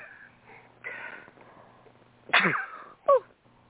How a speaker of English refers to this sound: Well, I'm going to sneeze. Oh, bless you.